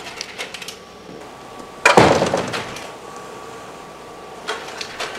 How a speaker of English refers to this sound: Close the door.